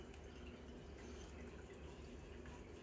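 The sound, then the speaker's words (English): Wine from a newly opened bottle pours steadily into a glass for a few seconds, a continuous soft splashing gurgle, with no voices over it. “We're just trying to open the next bottle”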